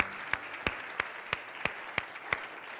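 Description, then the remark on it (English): An audience claps its hands for the Lord: a steady, evenly spaced beat of sharp unison claps, roughly three per second, rides over a continuous wash of scattered applause, with no voices. “Can you give the Lord a huge hand clap today because he's a good God?”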